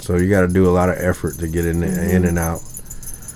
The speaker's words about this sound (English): Oh, that's my dog scratching.